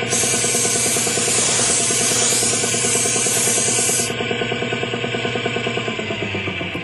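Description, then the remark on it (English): A loud, steady hiss of a paint sprayer painting a boat runs for about four seconds and then cuts off, while a droning compressor hum continues underneath to the end. “Give it another shot of paint over here”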